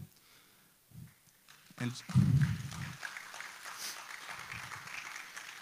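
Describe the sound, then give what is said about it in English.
A church audience breaks into steady applause, a dense, even patter of many hands clapping together that keeps going for several seconds, with a few low voices mixed in. “But you're clapping, but as in verse 20, as it says, to our God and Father be glory forever and ever, amen.”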